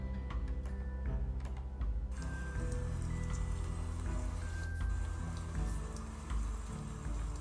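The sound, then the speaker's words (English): Steady rain falls around noon in a forest of very large trees, a dense patter of drops hitting leaves and surfaces with scattered louder ticks, continuous and even throughout with no voices. “Around noon, it begins to rain.”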